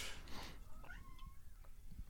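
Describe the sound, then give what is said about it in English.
A cat named Kiwi lets out a single drawn-out meow, fairly quiet, against a low background hum with a brief rustle just before it. “Yes, Cat? Kiwi?”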